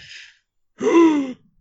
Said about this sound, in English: Gasp.